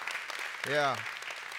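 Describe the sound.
A church audience claps for one another in a steady, dense patter from start to finish, while one voice calls out briefly over the applause partway through.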